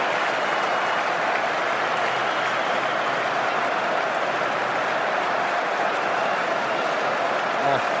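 A huge stadium crowd at an Ashes cricket match roars and applauds continuously as a player walks across in front of Bay 13, a dense, loud wall of cheering and clapping that stays steady for the whole stretch, with no single voice standing out.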